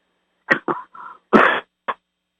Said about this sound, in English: I take a drink of water. Every time I cough, I take a drink of water. That's my way of getting rid of it. That's slowly going away.